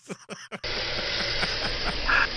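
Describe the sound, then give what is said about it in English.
A brief murmur of voice, then boiling hot water poured from a can pours in a steady, hissing rush that holds at an even, fairly loud level to the end, with faint gurgles and splashes inside it. “You got to add your water. With the can, by the way. And boiling hot.”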